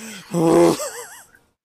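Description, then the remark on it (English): A voice imitates the angry, huffing breath Triple H pushes through his lips while walking to the ring: a strained groan-like burst that trails into a wavering, fluttering exhale, fairly loud, heard alone. “Yeah, we ended on Triple H walking up the ring, doing that kind of like angry breathing thing he does with his lips, where it's like.”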